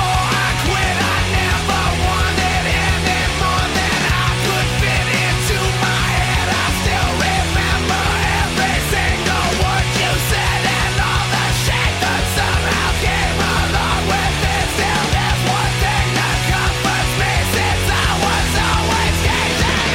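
A loud, dense rock song plays throughout, the part toward the end where the vocalist is shouting over driving drums, heavy distorted guitars and pounding bass, all at a constant high energy.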